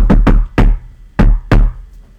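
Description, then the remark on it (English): Five sharp knocks on a hard surface tapped out as a secret knock in a patterned rhythm: a quick pair, a single knock, a short pause, then another pair. No one speaks. “I don't want to knock on your tablet, so I gotta move it a little bit.”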